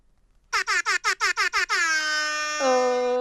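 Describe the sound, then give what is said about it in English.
A downloaded air horn sound effect, used as an entrance sound like a doorbell, blares seven quick staccato blasts, then holds one long loud note that drops slightly in pitch near the end, a classic entrance fanfare with no talking. “It's like my doorbell. I downloaded that specifically for this.”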